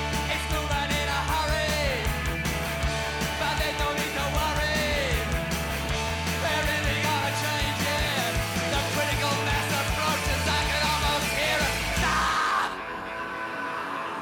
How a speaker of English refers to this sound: And then the bass even adds to the tension. It's climbing up and everything. And yep, then he screams.